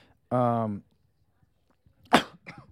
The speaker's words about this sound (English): sorry. Not a cough, just wrong pipe. I was trying to take a breath and talk at the same time.